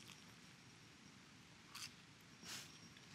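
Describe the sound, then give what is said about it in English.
Chewing of a small, round, cold chicken nugget that is no longer crunchy: soft, moist mouth sounds with two brief, louder crackly bites over a steady low hiss, and no talking. “They're not as crunchy as they used to be. They also are really cold right now, so maybe they used to be crunchy.”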